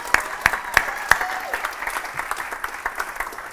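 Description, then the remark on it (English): A burst of audience applause: dense, steady clapping from many hands, with a few sharp louder claps standing out early, then settling into an even patter with no talking over it. “All right, can I get a round of applause?”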